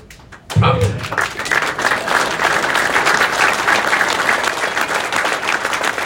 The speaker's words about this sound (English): You're clapping, but I'll leave with this.